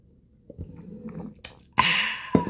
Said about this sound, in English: Excuse me while I take a sip of this drink.